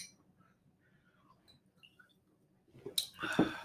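Shot glasses clink together in a toast over a freshly poured shot: a bright, sharp tap near the end, followed by some handling noise, after a few seconds of near silence.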